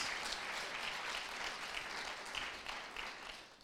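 An audience claps their hands for Jesus in sustained, dense applause, many overlapping claps forming a steady crackling roar that holds at an even level throughout, with no voices standing out.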